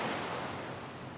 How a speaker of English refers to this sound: Well, this is just waves.